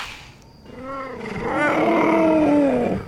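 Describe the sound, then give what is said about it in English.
A cheetah growls in one long, loud, rumbling vocalization that swells and wavers for a few seconds before fading out, with no talking. “Talking cheetahs.”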